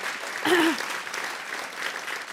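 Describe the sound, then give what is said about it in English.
An audience applauds at a panel discussion on happiness, a dense, steady wash of many hands clapping that holds at a moderate level throughout, with a short vocal whoop rising over it near the start. “Speaking of clapping, I just want to get a sense of the room.”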